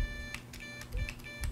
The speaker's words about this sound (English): There's a built-in buzzer, speaker buzzer, right here in the back of the macro pad. And that's just loud enough to get like some basic tones going.